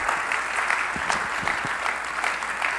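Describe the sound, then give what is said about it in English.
An audience claps together in a steady, dense wash of applause, many hands overlapping into a continuous crackle with scattered sharper slaps, holding an even level throughout with no voices on top. “And if you feel that way, it'd be okay if you just clap or say amen.”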